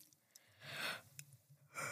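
A single drawn-out yawn made on purpose: a breathy intake swelling into a low, sustained groaning exhale, then another rush of breath at the end. No talking.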